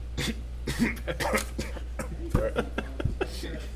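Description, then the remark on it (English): A person coughs with food in their mouth, not choking, in several quick, uneven bursts, muffled and thick, with some throat clearing mixed in, fairly loud. “I just had to cough and I had food in my mouth. So I started coughing.”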